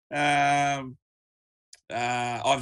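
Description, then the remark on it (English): A voice imitates a player's deep breathing technique used in the change room before kickoff: two long, loud groaning exhales, each nearly a second long, separated by a brief silence with a small click. “James O'Connor's deep breathing technique. I love that one. That's a bit of breathing.”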